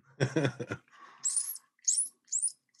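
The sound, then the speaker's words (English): A short burst of low voiced sound gives way to three thin, high-pitched squeaks, each rising and sharp, like a voice imitating a squeaking mouse, with brief gaps between them. “Dude, that mouse, it's ruining our recording, dude.”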